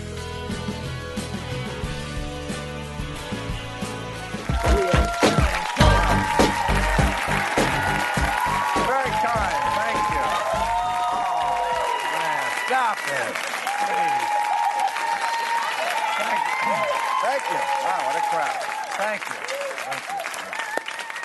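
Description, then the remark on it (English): A short burst of music gives way to loud, sustained studio audience applause for the Real Time monologue, dense clapping mixed with cheers and whoops that carries on steadily for many seconds. “Getting that He's Still Alive applause.”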